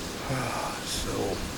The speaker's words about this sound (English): Let's listen to the rain for just a minute.